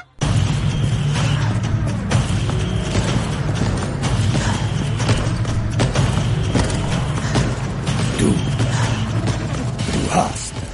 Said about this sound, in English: I feel like no other sound is really needed for Mr. X other than the music and the stomping footsteps. This is the most iconic tyrant.